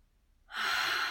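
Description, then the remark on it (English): A single steady inhale drawn in through the nose during a guided breathing exercise, starting abruptly after a brief silence and sustaining as a loud, airy hiss with no speech. “So I'm going to do that with you, breathing in.”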